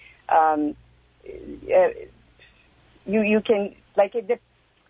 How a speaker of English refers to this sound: Oh, I think we lost … there. We're having some trouble with your phone.